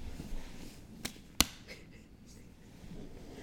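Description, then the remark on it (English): Feet clapped together twice, two sharp slapping smacks about a third of a second apart, the second noticeably louder, over a low steady background hum with no talking. “That was my feet.”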